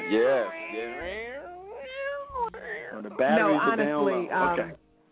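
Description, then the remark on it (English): A violin screeches and wails in sliding, wavering pitches, fairly loud for several seconds, sounding much like a yowling cat before cutting off. “That's the violin.”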